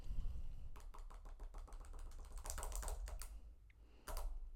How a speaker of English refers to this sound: The amount of times that I do this, like just all day, so annoying. Just clicking my pen, like. So annoying. I love these gel pens though. The Pilot G207, a top-notch pen